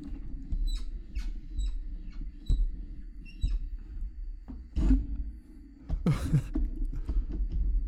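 A microphone being shifted and handled, with a low rumble of handling noise, a string of short high-pitched squeaks, and a couple of louder scraping bursts toward the end.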